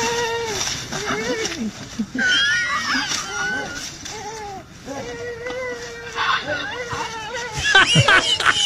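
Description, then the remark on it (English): An elephant giggling while his handler plays with him using an empty bucket: a run of squeaky, warbling high-pitched chirps and rising-falling calls, coming in quick bursts for several seconds, with a louder flurry of squeals near the end. “An elephant giggling. Not laughing, giggling.”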